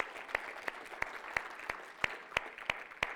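An audience claps their hands together as a clap offering to the Lord during a morning church service, in a steady, even rhythm, sharp unified claps landing about three times a second over a continuous bed of scattered applause.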